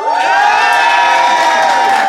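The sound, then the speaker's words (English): A studio audience cheers and shouts, applauding to vote for one side, in a loud, steady roar that holds for about two seconds, bright and high-pitched with whoops over the top; no distinct individual claps stand out. “So, the assembled audience, if you think Joe and Ben and therefore Beth is in the right, applaud now.”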